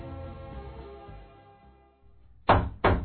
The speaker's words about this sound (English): Never heard of nobody knocking on this door before.